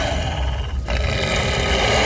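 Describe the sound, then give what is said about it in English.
The creature Inferna growls, a deep, rough rumble that holds steady and loud for about two seconds with a gritty, noisy texture and no voices over it. “Expectantly, and Inferna growls.”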